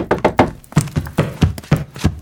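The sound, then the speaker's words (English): Loud, hard knocking at a door before dawn, roughly nine heavy thuds delivered in quick, uneven bursts, each blow sharp and resonant, with no voices. “Dawn had not yet broken when a terrifying rap came at the door.”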